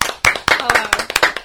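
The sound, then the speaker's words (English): A quick burst of loud hand clapping, with sharp claps landing in a fairly steady rhythm for about a second and a half, and faint voices mixed in underneath. “Clap it up.”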